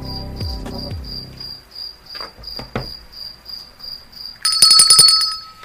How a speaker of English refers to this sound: Crickets are cricketing. Because nobody's listening, so that's like the cricket sounds.